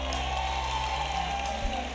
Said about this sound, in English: I believe we have some students coming out as well. Look, can you clap for all the students that are coming out?